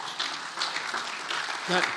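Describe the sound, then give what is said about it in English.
A crowd applauds steadily for a couple of seconds for the speaker's wife as the couple celebrate 53 years of marriage, a dense patter of many hands clapping at moderate volume, with a voice briefly rising over it near the end. “That claps for her.”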